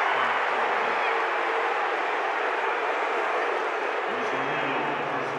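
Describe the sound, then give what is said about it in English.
A large arena crowd backing the Jazz roars in sustained disapproval after Royce is called for a foul on Luka Doncic in a basketball game, a dense wall of noise holding steady for several seconds, with a man's voice briefly audible beneath it at the start and again near the end. “Crowd doesn't like it, but Royce got him, I think, with the right arm.”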